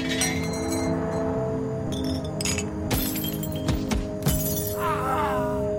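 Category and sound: sound effect, glass shattering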